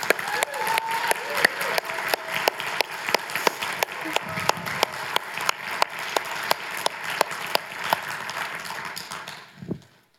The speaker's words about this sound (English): And just as people clapped for me the day I became a citizen, I would like all of us to clap for each other because we are citizens of the kingdom of God, aren't we?